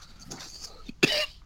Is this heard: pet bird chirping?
no